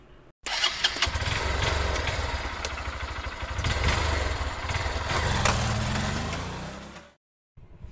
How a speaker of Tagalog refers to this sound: Tama, ito ay tricycle. Ang mga tunog na ito ay drum, eroplano at tricycle.